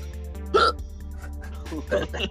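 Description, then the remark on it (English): A person with hiccups during a recording session: several short, sharp hiccups pop out at irregular intervals, the first one loudest, over a steady low electrical hum with no clear speech. “Do you got the hiccups?”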